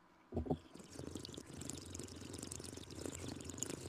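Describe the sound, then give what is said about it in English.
Bubbling, gurgling water held in the mouth while slowly breathing in so the water doesn't come out, opening with two quick louder splashes and then a steady burbling that runs on without pause, with no talking. “you put a little in your mouth, and then you kind of slowly breathe in so the water doesn't come out, so you get that, like, bubbling sound.”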